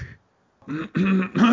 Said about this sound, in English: If I can clear my throat, if I'm allowed to cough still.